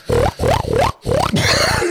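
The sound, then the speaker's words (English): A person imitates a pig with four loud, rapid nasal oinks, each a short harmonic squeal rising in pitch, followed by a breathier grunting snort. “why is your oink so fucking superb?”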